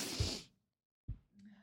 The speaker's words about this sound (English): Now I'm yawning because it's contagious.